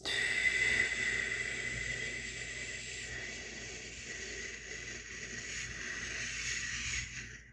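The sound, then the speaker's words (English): An airy breath sound: a person breathes in steadily through the nose, then breathes out in a long, slow, hissing exhale that lasts several seconds and stops abruptly, with no talking. “So breathe in through your nose and then breathe out.”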